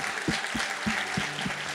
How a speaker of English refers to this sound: Come on, let's give the Lord our applause. Can we just do that? Amen?